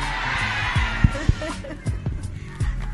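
Audience applause for a singer in Birmingham fills the opening moments as a dense, steady wash of clapping that gradually fades, while voices and a few sharp thumps come through underneath.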